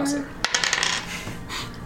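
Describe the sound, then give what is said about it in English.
Two ten-sided dice (2d10) are rolled for fire damage and clatter across a hard tabletop: a sharp first knock, then a quick burst of bright, rattling clicks that bounce and settle within about half a second. “Go ahead and roll that damage.”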